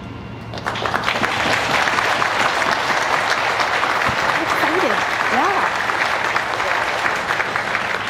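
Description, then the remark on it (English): An audience breaks into steady, dense clapping that starts abruptly and holds at an even, loud level throughout, with a few faint voices rising briefly through the applause midway. “Rugby always thinks that when people are clapping, they're clapping for him.”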